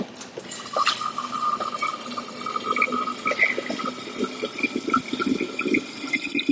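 Distilled water pours steadily into a narrow room spray bottle to refill it, a continuous trickling splash with rising, gurgling tones as it fills, moderately loud with no talking.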